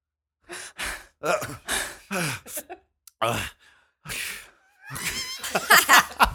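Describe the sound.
A voice imitates Jessica Biel's constant heavy breathing in the film Total Recall: a series of loud, breathy gasps and sighs in an uneven rhythm, building into strained, throaty panting toward the end.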